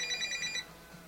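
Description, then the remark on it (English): A cell phone rings with a bright, warbling electronic tone in a quick pulsing pattern for about half a second, then cuts off, leaving faint low background noise. “Well, I rang twice. One call unanswered.”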